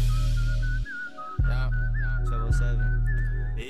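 A high, clear whistled melody, the Kill Bill-style tune, wavers up and down in short phrases over a thick, booming bass line with sharp percussive hits. No one speaks.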